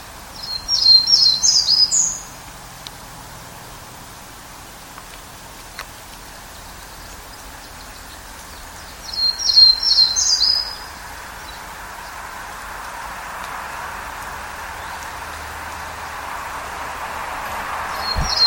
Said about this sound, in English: Before I leave the Townsend's Warbler, I'll go ahead and play each of those clips, one after the other, just so you have a sense of some of the variation in Townsend's Warbler song.